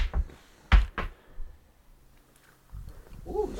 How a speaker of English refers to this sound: This one is going to be a ride. You guys ready for it? Get in there. Time for a group gulp. Group gulp.